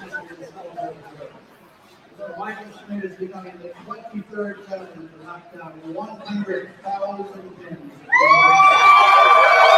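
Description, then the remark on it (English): A crowd at a bowling Open Championships event murmurs and chatters for several seconds, then suddenly erupts into loud, sustained cheering and high-pitched shouting that holds strong to the end. “And there's the crowd coming.”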